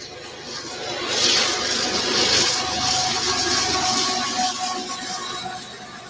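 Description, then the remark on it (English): A BNSF freight train rolls past, its steady rumbling roar swelling for a few seconds and then easing off, with faint sustained tones ringing above the noise and no one talking. “if y'all didn't know, we are addicted to the sound of a train blowing.”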